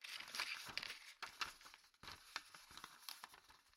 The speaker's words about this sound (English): A rustle.